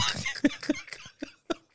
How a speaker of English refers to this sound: They'll get the dry cough off that shit.